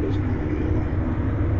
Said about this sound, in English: You know, I got trucks moving here and there, you know.